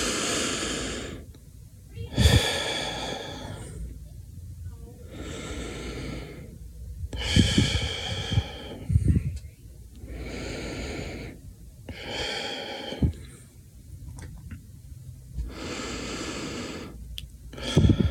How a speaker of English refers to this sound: Just relaxing and doing a little meditation is always good, so just breathing in and breathing out, of, you know, just for a minute even.